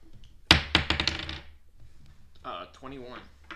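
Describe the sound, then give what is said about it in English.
Dice clatter onto a hard tabletop with two sharp impacts followed by a brief rattling tumble, then a person starts talking once the dice settle; the roll comes to 21. “Oh. Solid roll.”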